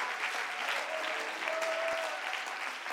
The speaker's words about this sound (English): Can somebody clap your hands? And can somebody give God praise?